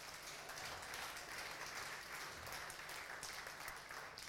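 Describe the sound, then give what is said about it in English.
An audience claps in encouragement for a young woman about to be baptized, a dense, even wash of many hands that holds at a constant level for a few seconds without letting up. “Let's give her a clap of encouragement right now.”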